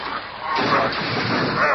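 Laboratory equipment in Reed Richards' lab, holding several months of research and a chemical vial, is smashed by the berserk Thing with a loud, harsh crash that bursts in abruptly after a low rumbling noise, then keeps roaring with dense, clattering debris for about a second.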